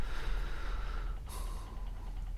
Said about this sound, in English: Mother's doing her breathing exercises. Sweating like a pig.